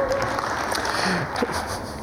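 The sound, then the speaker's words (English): An audience applauds in a steady, dense wash of clapping that holds at an even loudness for the whole two seconds, with no one speaking over it. “Wow, applause already.”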